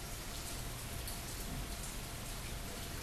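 rain falling

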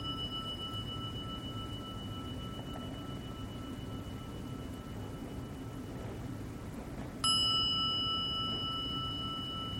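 meditation bell ringing

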